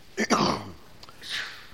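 A single sharp sneeze bursts out, loud and explosive, then trails off into a soft breathy exhale a moment later.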